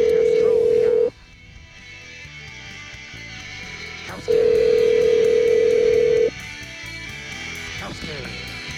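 A telephone ringback tone sounds while a call is placed: two loud, steady electronic tones about two seconds long, separated by a pause, over a quieter continuous background.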